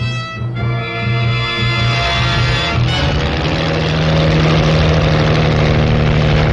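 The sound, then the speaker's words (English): A record-breaking racing car engine, the Napier Campbell Bluebird at Pendeen, idles with a steady, throaty harmonic hum, then revs up about halfway through into a louder, rougher roar that holds to the end. “In January, Campbell arrives at Pendeen with a completely new car, the Napier Campbell Bluebird.”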